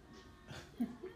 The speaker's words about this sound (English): Bless her. Oh my gosh. I ain't sneezed that many times in a long time.